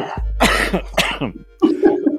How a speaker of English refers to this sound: All this talk of smoking is making my smoker's cough come back.